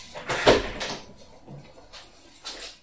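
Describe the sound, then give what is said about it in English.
A door is opened to let a cat out of the room, with a sharp creak and rattle of its latch, followed by softer shuffling and a couple of faint knocks as it swings and settles, with no talking. “And now I have to let my cat out of the room.”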